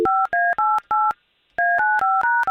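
telephone number being dialed

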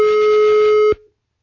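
telephone busy signal tone

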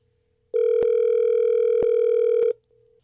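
outgoing phone call ringing

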